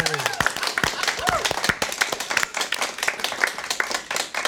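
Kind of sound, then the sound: crowd, round of applause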